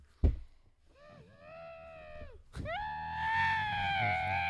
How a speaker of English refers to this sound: If you listen closely, you can hear his muffled screams in the pillow. Yeah, here's a demonstration.